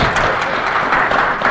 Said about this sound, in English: you can go ahead and clap, yes.